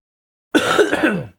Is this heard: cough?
yes